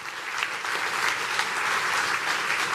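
An audience claps steadily and densely as two couples come up to share their story, a continuous wash of many hands applauding together at a fairly loud, even level for a few seconds, with no voices standing out.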